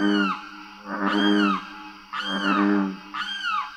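A limpkin, a tall wading bird, calls three times in loud, wailing, harmonic screams, each rising and falling over about half a second, separated by short pauses with only a faint low background, in a southern swamp on the Wasissa River in Florida.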